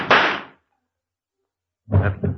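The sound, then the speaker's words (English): A single sharp gunshot, shooting a man at a cable car, cracks out and fades within half a second, leaving a stretch of silence before a short burst of low voice follows. “Perhaps we shouldn't have shot that chap.”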